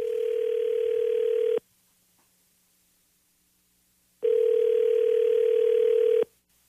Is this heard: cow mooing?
no